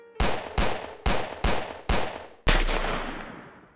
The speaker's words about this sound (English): 6 gunshots rang out in the time it took me to protect Sid and pacify Donovan. Not that I was concerned about any of them. Not a single one had come from the surrounding goons.